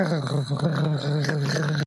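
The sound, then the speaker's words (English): A low, rumbling growl coming from the chest rather than just the throat holds steady for nearly two seconds, deep and fairly loud, then cuts off abruptly. “after that growl, he's just going to say, I'll hold off on it. Just, not just in the throat, just rumbling down into the chest.”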